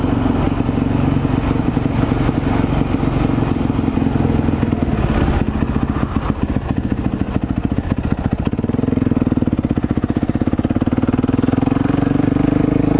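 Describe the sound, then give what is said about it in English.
A YZ450F motorcycle engine runs steadily and loud throughout, with a rough low rumble, some mechanical clatter and brief swells in revs, and no voices. “So, I'll admit, almost every single motorcycle you could buy is a better starting point for a supermoto than this one.”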